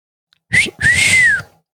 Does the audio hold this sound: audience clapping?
no